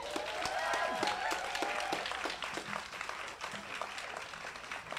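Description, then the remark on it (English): An audience claps steadily, a dense patter of many hands that holds for the whole stretch, with a few raised voices or cheers mixed in near the start. “Okay, clap a little bit more.”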